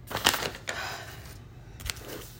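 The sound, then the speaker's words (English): Crisp paper rustling as an old notebook is opened and its pages handled, with a few short bursts of crinkling and flipping separated by quieter moments of soft handling noise. No one speaks. “I'm actually gonna open it right now.”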